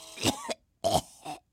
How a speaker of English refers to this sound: Are you feeling all right? She says, it's nothing. Don't worry. It's just a slight cough.